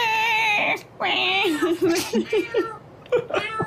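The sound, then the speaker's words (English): A voice imitates two grunts screaming as they are locked in a cell, with long, wavering high-pitched cat-like wails followed by a run of short yowling bursts, loud, with no other sounds around it. “They're just screaming. Oh, my God. Yeah, you closed a door on a cat.”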